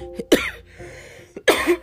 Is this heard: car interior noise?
no